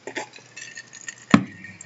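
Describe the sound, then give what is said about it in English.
A single sharp clink of a whiskey glass stands out near the end, fairly loud, after a few faint taps and rattles. No one speaks. “This is like my third glass of whiskey by now, so there's no telling where this episode's gonna go.”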